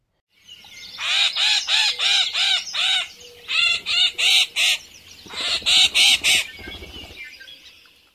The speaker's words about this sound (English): yellow-headed blackbird.